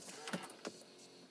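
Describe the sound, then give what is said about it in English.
A car door is unlatched and opened from inside the car, giving two quick mechanical clunks about a third of a second apart over a soft, steady background hiss, with no one speaking. “I had to open my door, y'all. I'm in my car recording.”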